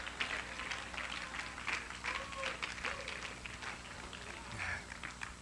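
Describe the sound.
A crowd claps steadily for several seconds in praise of Jesus, a dense, continuous patter of many hands at moderate loudness, with faint voices mixed into the applause.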